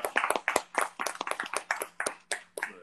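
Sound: hand clapping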